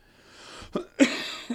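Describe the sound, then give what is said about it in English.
A fairly loud cough: a short catch of breath, then one harsh explosive burst trailing off into a breathy rasp, with a small huff at the end. No talking. “I coughed, though.”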